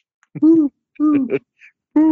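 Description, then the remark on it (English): A person's voice imitates an owl flying away into the night, giving three drawn-out hooting calls with short pauses between them, fairly loud, with no other talking. “I don't know how the owls do.”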